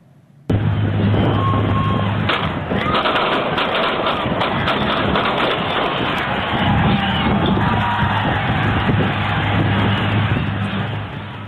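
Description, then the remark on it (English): A large crowd erupts into loud, chaotic screaming and shouting as gunshots ring out, the sharp cracking bangs scattered through the din. The roar of voices stays dense and intense throughout. “You're going to see what happened amid that crowd when the bullets started flying.”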